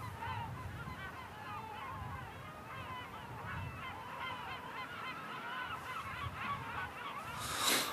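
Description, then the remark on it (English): Seagulls calling overhead in a constant, overlapping chorus of harsh cries that continues throughout, with a low rumble of wind or background noise and a brief gust of noise near the end. “I could probably listen to the seagulls.”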